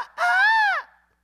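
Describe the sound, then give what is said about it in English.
A single loud hawk screech, a shrill, piercing cry lasting just over half a second that rises and then falls away, heard alone with no talking. “Somebody please cut that off. That's my Hawk.”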